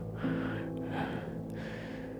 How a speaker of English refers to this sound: He's huffing and puffing after this.